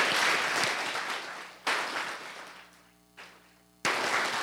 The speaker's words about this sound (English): If we can just give him a clap right now for that.